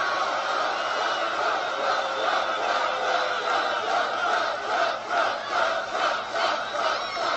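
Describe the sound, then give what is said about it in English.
A large crowd at an outdoor political rally in Pickens, South Carolina, in about 104-degree heat roars with cheers and shouts, a dense, continuous wall of voices that stays loud and steady throughout, rising and falling slightly in waves. “man, he draws bodies, and it was boiling hot.”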